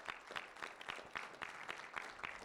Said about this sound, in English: Let's give the Lord a clap offering today.